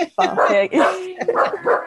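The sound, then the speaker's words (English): A dog named Frank barks repeatedly, a quick run of four or five loud, whiny barks with short gaps between them, as someone comes through. “Oh, he's going to be barking like mad now”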